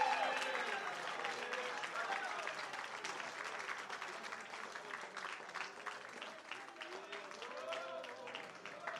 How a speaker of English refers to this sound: Somebody better clap their hands. Somebody better shout. Somebody better glorify God.